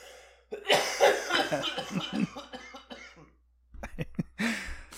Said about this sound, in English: I'm a pretty loud cougher. You are.